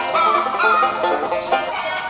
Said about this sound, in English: Hey, well, play that beautiful chicken theme song.